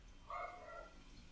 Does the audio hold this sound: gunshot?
no